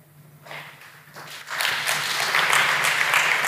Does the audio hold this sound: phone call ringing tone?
no